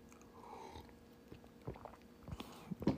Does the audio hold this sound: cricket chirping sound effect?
no